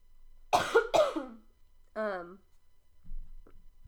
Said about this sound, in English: One second, I'm gonna cough again.